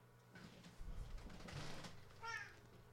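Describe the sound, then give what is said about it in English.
A cat lets out a short, whiny meow near the end as it is picked up, preceded by soft rustling and handling noises over a low background hum. The sound is moderately loud. “Why the hell doesn't he like being picked up? He's purring. And just screams.”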